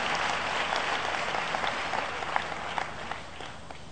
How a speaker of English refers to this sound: Put a hand for Jesus Christ. Applaudissez pour Jésus Christ.